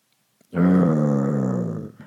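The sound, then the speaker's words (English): A single low, rumbling growl beside a tent rises abruptly and holds steadily for about a second and a half before tapering off, fairly loud, with no talking over it. “You're met with a growl.”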